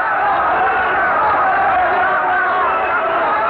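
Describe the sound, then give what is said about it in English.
A dense, steady wall of many voices clamoring together, loud and sustained without a break: a large crowd shouting and roaring at once, demanding a miracle. “They are roaring for a miracle in Savonarola again.”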